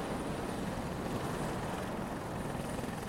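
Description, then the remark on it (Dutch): A helicopter's engine and rotor roar steadily, a dense, unbroken drone with a faint rhythmic chop running through it and no voices; the helicopter stands on a sandbank at the spot where the ship usually moors. “Er staat een helikopter dus hier, op de plaat, waar anders altijd het schip aanmeert.”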